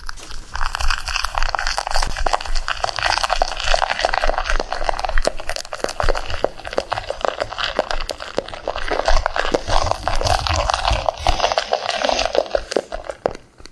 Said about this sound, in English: That was someone stirring shaving cream in a shot glass.